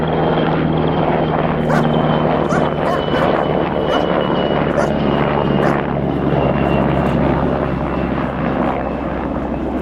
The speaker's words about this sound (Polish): Jak przelatuje mi w czasie wolnym śmigłowiec nad domem, to właściwie psy całe są nakręcone, biegają